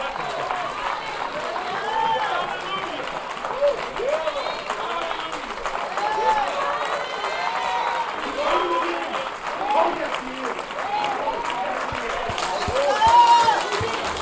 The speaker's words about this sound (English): Come on, let's give the Lord God a clap offering.